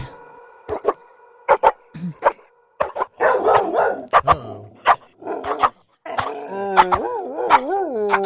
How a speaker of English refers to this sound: It's like a dog bark remix.